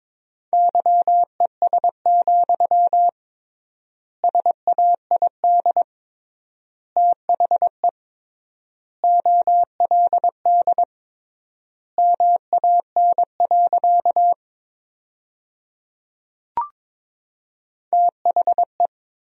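Morse code sentences built from the top 500 words, sent at about 22 words per minute with triple word spacing, as a steady mid-pitched tone keyed in quick dots and dashes, with long gaps between words and a single brief click partway through.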